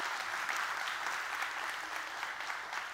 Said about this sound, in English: Journey Church, can we give them a great big hand clap today just to welcome them?